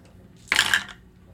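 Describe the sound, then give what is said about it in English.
A quick, bright clatter of dice tumbling across a hard surface, a burst of sharp rattling clicks lasting under half a second before fading to quiet. “Just keep rolling until you get what you want.”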